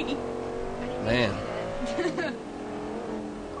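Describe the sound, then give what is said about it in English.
A race car engine in a racing video game drones steadily with rising and falling pitch as it revs and shifts, loud, with a brief surge in the middle. “It's because it's not just the car model on the outside, all the damage modeling and all the authentic engine sounds, it's also the authentic interiors.”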